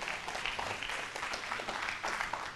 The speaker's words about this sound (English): If you receive it, give them a hand clap of praise.